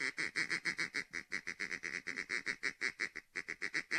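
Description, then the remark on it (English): A handheld Haydell's gray duck call blown in a fast, steady run of loud, nasal quacks, continuous for several seconds, mimicking a calling gray duck with no voices present. “Yeah, that's my Haydell's gray duck call.”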